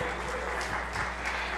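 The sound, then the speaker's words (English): An audience claps their hands together unto the Lord during a sermon, a dense, steady wash of applause from many people at moderate loudness with no pauses. “Somebody clap their hands unto the Lord.”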